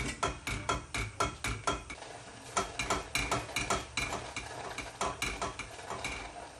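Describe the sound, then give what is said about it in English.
Cherry jam made with stoned, halved cherries boils and bubbles in a pot while being stirred, with a steady run of sharp popping and clattering pulses, several per second, and no one talking. “It's boiling, it's bubbling now.”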